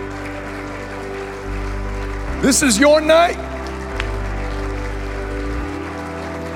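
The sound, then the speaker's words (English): An audience at a church altar call claps steadily, a dense, even patter of many hands that fills the whole stretch, while a man briefly speaks over it partway through. “Keep coming, keep clapping.”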